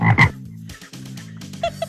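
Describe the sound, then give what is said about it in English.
Cane toads croak in a steady, overlapping chorus in a flooded area in Australia, low throaty trills pulsing, with a couple of louder, sharper calls standing out at the start and near the end. “Look at those toads. They're thirsty.”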